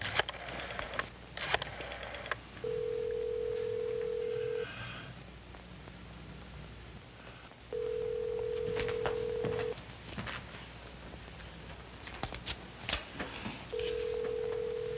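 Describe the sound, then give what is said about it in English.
A harvest yellow wall telephone is picked up and dialed with a few quick clicks to call a cleaning business, then a steady ringback tone repeats three times, each about two seconds long, with pauses between. No one answers. “Reaching for his harvest yellow wall phone, Buster Lee called Cooper's Cleaners”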